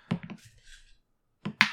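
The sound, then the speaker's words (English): A small six-sided die, rolled in a tabletop game, clatters across a hard desk in a quick burst of sharp clicks, goes quiet for about a second, then knocks a few more times as it drops off the desk. “This dice Rube Goldberged its way to the bottom of the desk, and hold it's on.”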